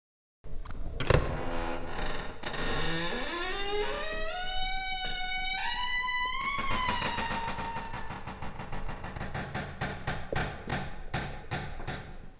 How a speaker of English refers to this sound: So, two stories in, I think that's a good time where we listen to the door creak.